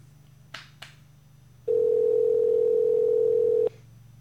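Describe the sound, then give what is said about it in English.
A couple of faint clicks, then a loud, steady telephone ringing tone from an outgoing call to Washington, D.C. holds for about two seconds before cutting off, heard over a low line hum with no one speaking. “Well, there it's ringing out east.”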